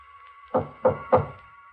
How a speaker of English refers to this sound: He's come. He knocks on my door.